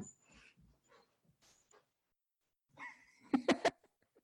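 A pet dog named Nova lets out three quick, loud barks in a row, after a few seconds of softer, faint vocal noises.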